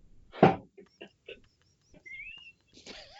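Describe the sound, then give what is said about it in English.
A person imitates a Canada goose, opening with one loud, harsh honk followed by several shorter, quieter honking calls. A thin whistled tone and a rougher vocal call come near the end. “I thought there was a bird in the background there.”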